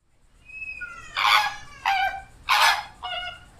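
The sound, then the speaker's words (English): A flamingo honks four times in loud, nasal bursts at an uneven pace, preceded by a few fainter, thinner calls and with no one talking. “Look at this flamingo.”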